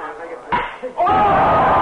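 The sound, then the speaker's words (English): A baseball bat cracks sharply against a ball once as Bridwell hits it into center field, over a murmur of voices, followed by a second thud and a swell of loud, sustained noise like a cheering crowd. “Bridwell smacked it out in the center field for a hit.”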